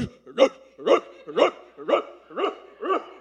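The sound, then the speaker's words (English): A neighbour's dog, let out into the yard at 6:30 in the morning, barks repeatedly in a steady rhythm, seven sharp barks roughly half a second apart, clear with no talking. “It was non-stop. This dog was relentless. It would not give in, and I'm just, what is happening?”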